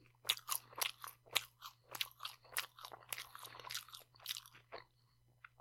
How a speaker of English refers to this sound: It's not the talking, chewing, lip smacking.